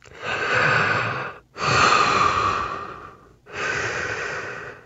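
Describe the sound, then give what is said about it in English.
Heavy breathing of an astronaut inside a spacesuit helmet on the moon: three long, loud breaths with short pauses between, sounding slightly muffled and enclosed, with no talking. “Well, they'd hear their own breathing through.”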